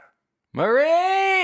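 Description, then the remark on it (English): A female dog lets out one loud, drawn-out bark after a brief silence, held for about a second, with a steady, almost howling tone. “I don't think we're going to be able to escape her barking.”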